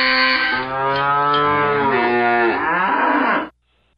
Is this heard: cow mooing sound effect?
yes